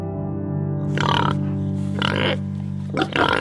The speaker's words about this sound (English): Though Mizra no longer raises or sells pigs, it does keep a small, snorting reminder of its porcine past.